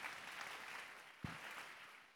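An audience claps steadily, a dense, continuous patter of many hands with a single sharper low thump partway through, no speech heard over it.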